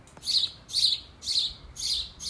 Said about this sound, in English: Birds, like, right above me, chirping.